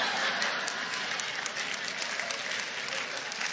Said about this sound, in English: Now, I noticed the women clapping. It ain't over.